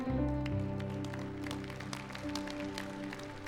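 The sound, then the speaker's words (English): An audience at a Sunday church service at Calvary applauds, a scatter of sharp claps running steadily throughout, over a steady bed of sustained, low musical tones that hold underneath the clapping. “Now, I appreciate the applause on that.”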